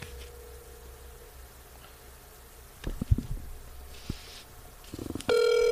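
outgoing telephone call ringing

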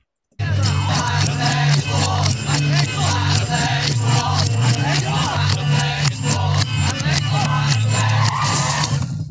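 car crash sound effect

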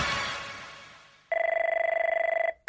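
telephone ringing

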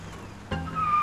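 car engine driving

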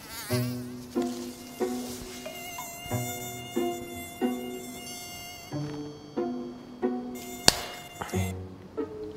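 mosquito buzzing

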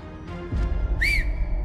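someone whistling

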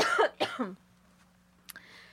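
cough

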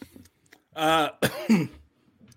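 coughing

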